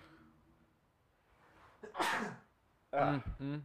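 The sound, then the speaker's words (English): A faint murmur and a breath lead into one loud sneeze, a sharp airy burst, followed moments later by a brief voiced sound as the person recovers. “I do need to sneeze, though. Hold on, okay.”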